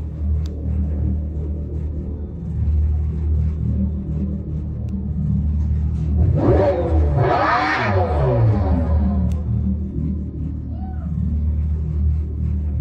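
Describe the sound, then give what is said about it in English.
A synthetic engine sound from a Dodge electric car, meant to carry some of the noise of muscle cars: a steady low droning hum that swells midway into a louder, rising and falling whine with layered tones, then settles back to the rumble. “And should an electric car make a noise?”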